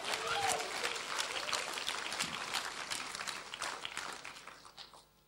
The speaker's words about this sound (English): And I hear people clapping today because they're emotional God lovers. And if that's you, you better make it a big one, a big clap for Jesus.